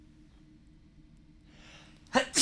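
A sharp inhale builds into one loud, explosive sneeze, breaking an otherwise quiet moment with no talking.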